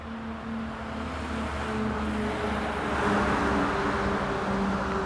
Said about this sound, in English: And to crush our spirits, there goes a logging truck with thousands of pounds of wood.